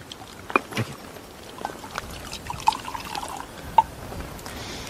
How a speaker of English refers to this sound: German says, give me a bottle of champagne to his troops in the trench. And he starts pouring glasses of champagne.